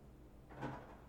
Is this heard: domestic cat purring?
no